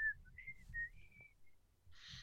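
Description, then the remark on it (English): A person whistles a short tune, clear, with steady sustained notes sliding between pitches, over a low background rumble and ending with a brief breathy hiss. “That's some good whistling right there.”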